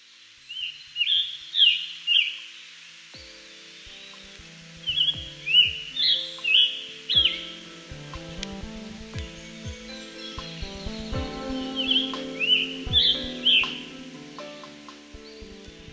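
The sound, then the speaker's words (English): A scarlet tanager sings three bursts of hoarse, burry robin-like phrases, each a quick run of four or five slurred notes, with faint rustling below. “Some call it the sore-throated robin due to its screechy song that has a melody not unlike the American robin.”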